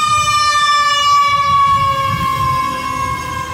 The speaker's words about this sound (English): Those are the haters from Twitter just driving around with sirens. I was going to say they're trying to revive my career.